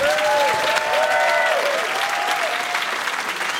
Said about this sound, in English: Okay. Ladies and gentlemen, a round of applause, please, for our lovely guests